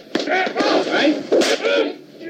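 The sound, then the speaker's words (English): A few sharp, smacking slaps to the face crack out one after another over a dense bed of voice and grunting, each hit a quick, bright burst that fades fast. “It's a slap, isn't it? It's a slap.”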